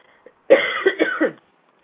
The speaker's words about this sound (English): Excuse me, I'm so sorry, I have allergies or something and I'm going to cough, pardon me.